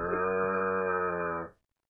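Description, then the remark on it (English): A person imitates a cow with one long, steady, low moo held for about a second and a half before cutting off abruptly, loud, with no other talking. “Has anyone made a cow progress key? Because I want, like, necking cow. I think you know what the sound would just be.”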